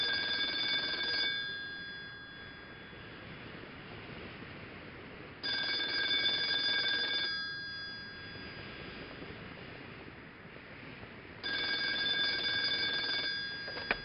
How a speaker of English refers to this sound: Phone rings. I took a few steps and picked up the receipt.